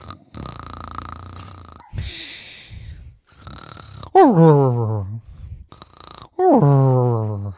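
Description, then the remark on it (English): A person imitates a dog snoring with several drawn-out, rumbling snores, two of them sliding into loud, descending groaning whines. The mimicked snores come clear, alone without talk. “So he jumped up there, and he started to fall asleep and snore.”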